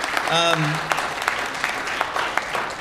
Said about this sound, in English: Yes, let's clap for our moms.